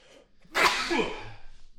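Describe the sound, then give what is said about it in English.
A single loud sneeze bursts out suddenly, a sharp explosive blast of breath that trails off into a short airy rasp, with no talking around it. “Bless you.”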